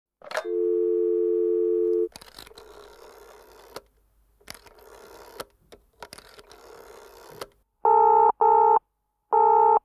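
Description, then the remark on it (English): As a call is placed back to the 'squid phone', a steady telephone dial tone hums for about two seconds, followed by crackly line noise and clicks, then a loud, pulsing busy signal repeating in short on-off bursts. “So as promised on the Christmas episode, I think it's time that the podcast return the call to the squid phone and we hear all about it from the Lord of the Squid.”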